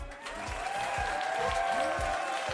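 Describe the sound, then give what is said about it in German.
A steady applause sound effect, played from button C4 on a soundboard, fills the whole stretch: dense clapping with a regular low thump roughly every half second and faint tonal music beneath it. “Der Applaus, der auf C4 liegt, den drücke ich heute nicht mehr.”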